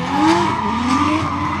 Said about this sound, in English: There seem to be people racing, drifting cars and things around the arena, and there's quite a lot of white smoke to go with it.